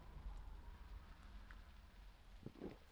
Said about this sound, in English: Now the rain's fair coming down now. I don't know if you can hear it. I wonder if you can hear it.